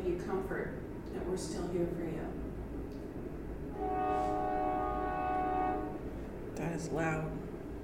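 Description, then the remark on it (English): A passing train's horn blares in a long, steady blast partway through, with a brief second tone near the end, over a rumbling background and faint, indistinct voices. “What do you think they carry on the trains that go through here?”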